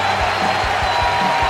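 A baseball crowd at Nationals Park gives a sustained ovation for Zimmerman as he is taken out of the game, with the Boston Red Sox team out on the edge of the grass; a loud, steady wash of cheering and clapping with a few low, dull thumps underneath.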